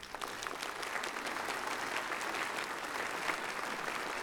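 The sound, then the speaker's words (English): An audience at Church of the Palms breaks into sustained applause to welcome new staff members, a dense, steady wash of many hands clapping at an even level for several seconds with no voices standing out. “And so we welcome them, and we invite you to welcome them with your applause.”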